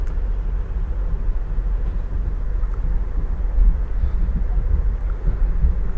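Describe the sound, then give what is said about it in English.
A steady low rumble of a diesel train that has slowed to about 10 to 15 miles an hour, rolling over the tracks, heard from on board as it nears a switching interchange before tunnels to Hoboken. Continuous and fairly loud with faint irregular clanks and no voices. “The train has slowed down quite a bit. We're only going about 10 miles an hour now, maybe 15 miles an hour.”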